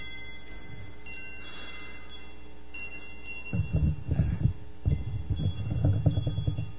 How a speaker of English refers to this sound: You hear the wind chimes, all right?